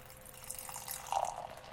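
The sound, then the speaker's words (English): A 4% alcohol huckleberry beer from Ponderay, Idaho, USA is poured into a glass: a short, soft glugging splash with a rising, filling gurgle near the end, fairly quiet, with no talking. “And the pour.”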